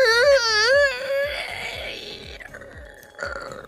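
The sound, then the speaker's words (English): A voice mimics a door handle creaking at nighttime when sneaking in late from the pub, with a wavering, high-pitched squeal that bends up and down, then drifts into a strained, grinding rasp before a short, breathy squeak at the end. “Even the door handle is loud.”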